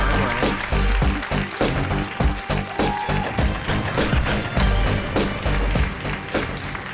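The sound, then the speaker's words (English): A studio audience applauds at the host's call before a panel is introduced, steadily for about seven seconds, a dense, crackling wash of clapping that stays loud throughout, with faint tonal music running underneath. “Come on. Applause.”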